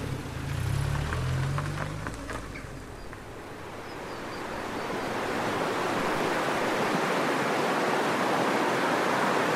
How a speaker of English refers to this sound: This is the River Fane. This forms the border between County Monaghan and County Armagh, and then up the road there between County Monaghan and County Louth.